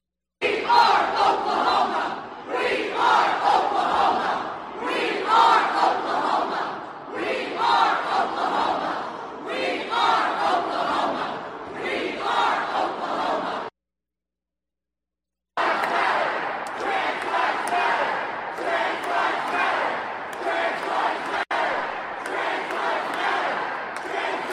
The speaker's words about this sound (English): I'm going to take you to the Oklahoma Capitol, where you're going to hear some of the chants that are coming out. We are Oklahoma. We are Oklahoma. This is our house, shouting as well. Let's just listen in to some of the rampage taking place there.